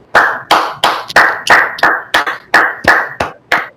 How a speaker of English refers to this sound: clap